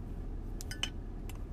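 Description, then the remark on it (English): A bottle cap is pried off a glass bottle of Dublin, Texas Root Beer, heard as a few quick, sharp metallic clicks and a brief glassy clink over a low steady rumble, with no talking. “Of course, these two are in glass bottles with caps that you have to pop off.”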